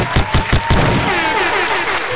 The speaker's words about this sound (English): Where are these claps coming from? If nobody's in the room, where are these claps exactly. coming from? We have real hands.